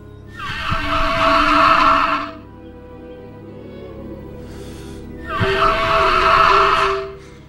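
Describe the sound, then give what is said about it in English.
Two loud, breathy whistling calls from a device in a film shaped like a clenched heart, with a hollow, ocarina-like resonant tone, each lasting about two seconds and separated by a few seconds of quiet. No one speaks. “There's a little bit of a whistle in it.”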